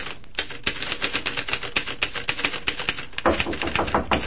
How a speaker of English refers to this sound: Well, right now it's about 1 o'clock that same afternoon, and Tom is working away at his typewriter when the knock comes on the door.